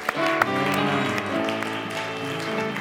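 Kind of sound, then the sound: crowd, audience hand clapping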